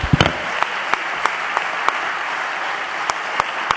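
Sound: audience clapping hands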